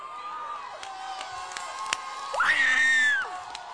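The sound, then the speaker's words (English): An audience screams and cheers in a sustained roar, with a sharp rising shout that swells louder midway and holds before easing back into the continuing clamor of many voices. “I wish I had a young person that was ready to scream at hell tonight.”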